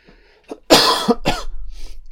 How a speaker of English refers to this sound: I do apologise for the coughing, but it's just how I am right now, just not very well.